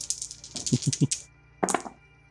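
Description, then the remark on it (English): Four dice, rolled in a tabletop roleplaying game, clatter and rattle across a hard surface in a quick burst of clicks, then a second, shorter tumble a moment later, showing a 1, two 3s and a 5. Fairly loud, with no one talking. “4 dice.”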